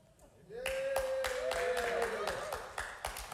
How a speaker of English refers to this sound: Yes, clap some more, clap some more.